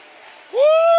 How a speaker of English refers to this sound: I think you ought to clap your hands and shout hallelujah.